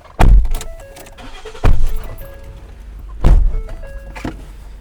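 Three heavy car-door thunks land about a second and a half apart as people get into a car, with soft electronic chime tones and rustling in between.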